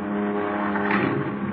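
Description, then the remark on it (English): A car engine rumbles as the car crawls slowly down a driveway into the rain and darkness, a steady, droning hum holding an even level throughout a brief stretch, with no voices. “I watched the car crawl down the driveway into the rain and the darkness.”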